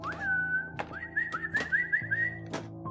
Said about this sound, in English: He began whistling at me like a dog owner.